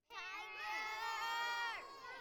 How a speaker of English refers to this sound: So I'm going to say one, two, three, and then I want you to yell as loud as you can your favorite animal.